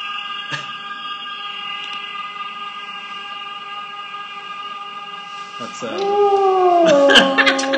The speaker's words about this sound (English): I just liked the scream, the echoed scream. It does last a long time.